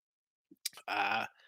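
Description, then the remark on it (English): A single yawn: a quick sharp inhale, then a brief drawn-out groaning vowel that fades. No other talking is heard. “Excuse me with my yawns.”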